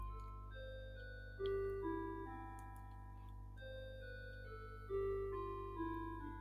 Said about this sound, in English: That's my clock in the background.